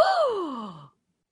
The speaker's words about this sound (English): That was a great gasp.